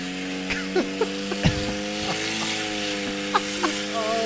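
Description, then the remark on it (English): An electric vehicle's motor drones with a lawnmower-like buzz, its layered hum holding constant pitch while scattered sharp clicks and brief pops punctuate it. “Sounds like a lawnmower. it's electric.”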